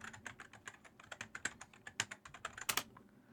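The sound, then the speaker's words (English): Rapid, loud clacking on a computer keyboard that was bought specifically for being loud, typed while looking something up online, with dense bursts of sharp keystrokes and a few heavier key hits near the end. No one speaks. “You are the loudest typer in the fucking universe. I specifically bought a loud keyboard.”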